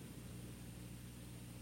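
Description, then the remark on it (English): A faint, steady drone of an airplane passing overhead, a low continuous rumble with a broad hiss, holding even in volume throughout with no voices. “We've got a plane flying over now.”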